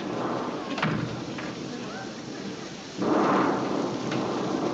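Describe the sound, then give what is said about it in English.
Steady, hissing rain pours without pause while thunder rumbles low and rolls through, swelling to a louder burst partway through. No one speaks; the storm sounds as if it's coming in an open window. “Oh, it's raining in.”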